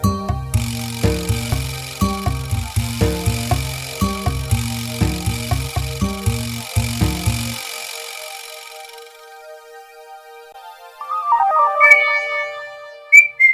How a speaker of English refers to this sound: Is that your first ever whistle? Yeah, I've trying to. Never heard you whistle before.